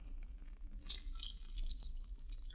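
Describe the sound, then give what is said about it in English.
Gum chewing: soft, moist smacks and clicks repeating irregularly over a low background hum, with no voices. “Do you chew gum all the time?”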